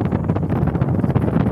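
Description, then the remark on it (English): Loud, gusty wind rumbles and buffets the microphone in a continuous low roar that surges and dips from moment to moment, with no voices coming through. “It's very windy, obviously.”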